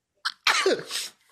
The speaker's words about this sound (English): Bless you. Thank you.